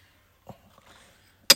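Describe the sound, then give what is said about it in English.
Ice cubes clink against a glass of bourbon and Coke, a soft knock, a faint shuffle, then one sharp, bright rattle. No one speaks. “Rattling around in the glass.”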